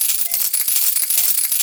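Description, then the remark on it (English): A shower of dimes, sneezed out by someone, clatters and jingles steadily for under two seconds, bright metallic tinkles with thin ringing tones overlapping throughout, fairly loud and with no voices. “I just sneezed out dimes again.”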